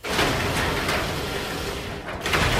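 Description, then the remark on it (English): A garage door being opened and closed grinds and rattles along its track in a loud, steady mechanical rumble, with a few sharper clanks breaking through the continuous noise. “is opening and closing a garage door right now”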